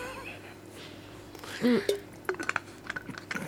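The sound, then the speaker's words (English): A glass of water being handled: a soft knock, then several light, high glassy clinks and taps in an irregular run, fairly quiet over a low background hum. “I need a drink of water.”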